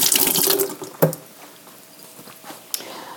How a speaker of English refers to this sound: So I'm putting that in the sink, washing off my hand from the residue.